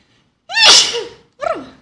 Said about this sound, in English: I'll leave this in. You know where I come from, we say that if you sneeze, it's true.